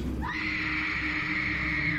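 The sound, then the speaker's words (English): A single drawn-out scream rises sharply and holds a high, strained pitch for nearly two seconds, with a faint rumble of background noise beneath it. “It was definitely a scream.”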